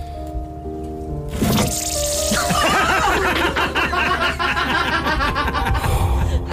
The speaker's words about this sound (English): So here he is where he opens the can with a can opener. You'll hear him swear because, well, I've beeped it, but you'll swear because the can kind of opened in a weird way, and then it makes one of the best noises ever.